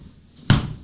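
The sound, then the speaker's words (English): A single sharp, percussive slap of a hand striking skin, picked up by a slap mic, loud and punchy with a thick low thump and a brief ringing decay, standing alone after silence. “Oh my god, that sounded percussive. Did that hurt?”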